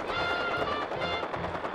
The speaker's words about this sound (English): A lot of gunfire. But I'm not seeing anything.